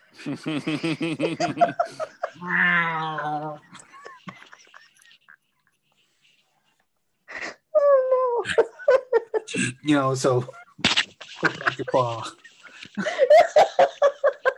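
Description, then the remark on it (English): A person imitates a hairless cat's meow, drawing out several warbling, pitch-bending vocal cries in bursts, with chuckling and other voices in between and a short silent pause midway. “Who sounds like a hairless cat.”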